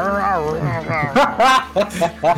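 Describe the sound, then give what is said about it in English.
A person's voice makes gruff, wavering growls and short snarling bursts, imitating a monster, loud over about two seconds. “And so you see one Swerf Neblin that has a comically large fake sword, and he seems to growl all the time.”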